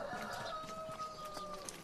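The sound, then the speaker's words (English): A hen, Humpy, clucks insistently in a steady, drawn-out series of calls, announcing she is about to lay an egg, outside near a workshop, with other farmyard birds faintly audible in the background. “She's announcing that she's going laying.”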